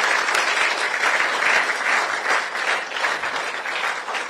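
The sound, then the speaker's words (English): Sustained applause from an audience at the National Science and Maths Quiz at 30 event, after a message from a representative of sponsor Goyal, many hands clapping in a dense, steady wash that holds at a fairly loud, even level throughout with no voices standing out. “Look at how you are clapping. Is it good?”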